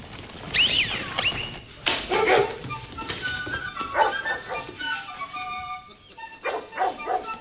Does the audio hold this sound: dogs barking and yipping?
yes